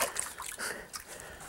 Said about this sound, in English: Well, I hate to pour this good stuff out, but I don't need it no more. Look at that corn down the bottom of that, see it?